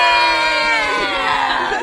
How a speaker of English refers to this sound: Collective scream, yay! Yeah!